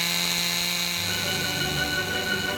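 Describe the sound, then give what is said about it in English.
A chainsaw, started up to be juggled along with a bowling pin, runs loudly and steadily, its buzzing whine dipping slightly in pitch partway through, with no one talking over it. “And here's a bowling pin and a chainsaw. Let me start it up here.”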